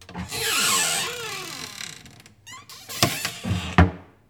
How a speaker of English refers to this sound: The wind had kicked up. The house shutters were creaking a little.